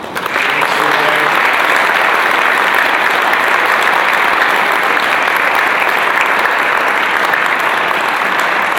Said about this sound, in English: If we give another round of applause for him.